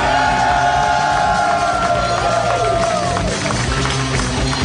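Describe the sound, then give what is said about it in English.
An audience cheers as Dan Harmon is welcomed to the stage at a Harmontown live show: a loud, steady roar, dense and unbroken, with clapping mixed in and a few sustained tonal whoops or notes riding above the crowd noise. “And a weird thing happened there because I heard cheering and I was preoccupied and we're relaxed now.”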